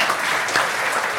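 A round of applause: many hands clapping in a dense, steady wash of sound that holds at an even level throughout, with no voices heard over it.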